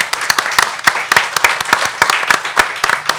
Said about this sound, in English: Please give a final warm round of applause for Adam.